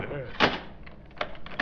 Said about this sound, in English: Ivan, you fool. Why did you close that door?